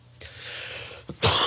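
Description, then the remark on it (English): A loud cough caused by allergies: a long breathy rasp, a brief catch, then a sharper, harsher burst, with no talking around it. “It's just allergies, not a COVID cough.”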